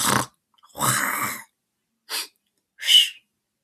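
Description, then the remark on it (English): A voice imitates a creature at a stream sniffing and snorting: four loud, breathy bursts separated by short silences, the second long and rasping, the last two quick and sharp. “Then again, there was silence, broken by a succession of long sniffs and snorts of tremendous volume and energy.”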